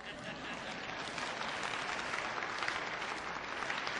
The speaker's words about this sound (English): I even see a few men applauding. That's good.